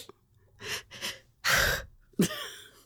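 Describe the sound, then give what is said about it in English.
Four quick, forceful breaths in and out, like someone deliberately hyperventilating during a Wim Hof breathing exercise. The breathing grows louder and harsher toward the end, with no talking. “Hyperventilate.”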